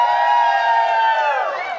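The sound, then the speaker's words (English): A large crowd cheers and whoops loudly and continuously, many voices blending into a sustained, bright roar that holds steady for the whole moment. “And then we happen to also have a microphone, and we can start saying things to people and be like, cheer for drones.”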